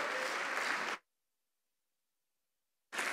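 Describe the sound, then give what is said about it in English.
An audience claps loudly in a dense, steady burst for about a second, welcoming a preacher at a Monday night church service, then it cuts off into near silence before the applause briefly returns at the very end. “Let's give him another warm welcome as he comes to preach to us.”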